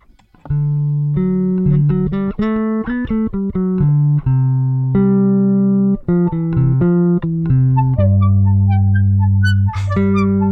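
A rock song's guitar intro plays loud and alone: a quick run of bright, ringing melodic notes repeating in a steady rhythm, with a few higher notes near the end.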